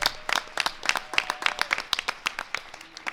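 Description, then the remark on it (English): An audience applauds to thank the event's e-board organizers. Dense overlapping hand claps form a bright, crackling patter at moderate loudness that continues for a few seconds without any talking. “Give them a hand.”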